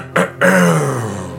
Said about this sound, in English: Got to clear my throat for this.